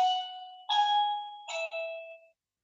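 A house doorbell chimes alone, a few bright ding-dong tones struck in quick succession, each ringing out briefly before the sound fades to silence, with nobody at the door. Clear, with no voices.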